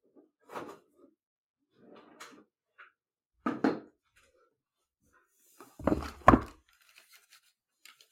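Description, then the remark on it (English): Someone rummages through a drawer looking for the box of a Kodak Luma 150 pocket projector: scattered rustles, knocks and light clatter come in uneven bursts, then two louder bumps follow before it trails off into quiet shuffling. No one speaks. “It's in the drawer next to me. Rummage.”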